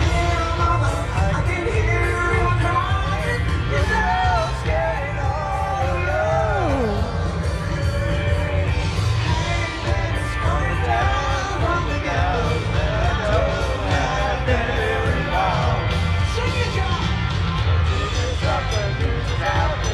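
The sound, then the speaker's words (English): A large concert crowd sings together loudly and continuously, many voices wavering off pitch in a ragged, uneven chorus over a dense wash of noise for the full stretch. “Hear how terrible and out of tune the crowd is.”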